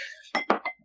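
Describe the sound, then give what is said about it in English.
A big wine glass clinks, a bright ringing tone followed by three quick knocking taps that fade out within a second. No one speaks. “Okay, this is a big glass of wine, so I'm ready for it.”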